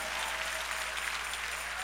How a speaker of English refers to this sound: Come on, clap your hands and give praise to the Lord.